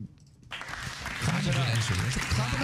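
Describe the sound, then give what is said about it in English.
A burst of applause after a Ghostbusters entry is played starts abruptly after a brief quiet moment and stays steady and fairly loud, with voices cheering or calling out through the clapping. “Clap it up.”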